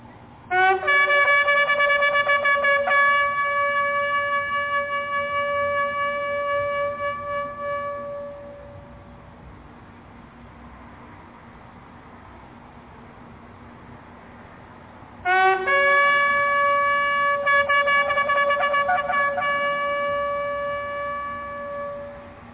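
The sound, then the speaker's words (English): A shofar sounds two long, brassy blasts. Each opens with a brief lower note, then jumps to a steady, buzzing tone that fades out. A quiet pause separates the two calls. “Here's a shofar how it sounds.”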